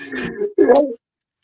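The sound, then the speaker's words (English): A single sneeze: a drawn-out voiced intake, a brief pause, then a sharp, hissy burst that cuts off abruptly and leaves silence behind. “Bless you, man.”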